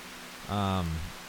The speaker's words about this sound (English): What's nice about this the time jail is we can just hear the ocean in the background, that soothing that white noise, that digital hum that's going on. It's some sort of, you know, galactic rain.